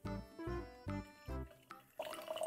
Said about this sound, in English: So pour into your, you've got a conical flask. Yeah. Pour some of your liquid with none of your bits into your conical flask.